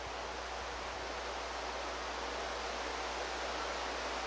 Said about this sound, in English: That's rain.